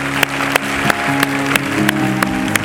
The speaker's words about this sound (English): Would you give a great applause to our fathers today? Come on, give a great applause.